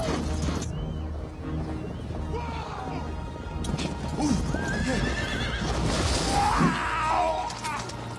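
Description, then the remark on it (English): A horse whinnies loudly midway through while hooves clip-clop steadily on a hard surface, with faint voices murmuring in the background. “That horse is pretty fucking strong for holding it.”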